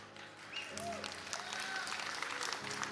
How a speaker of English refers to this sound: Now listen, this is Sunday night. And for the Sunday night group, that was a little bit of a golf clap, which you know we don't do here.